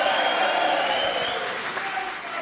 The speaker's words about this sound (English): And to my left, perhaps a round of applause for the first time in his life and maybe one time only, the manager of Jack Catterall, Sam Jones, is in the place tonight.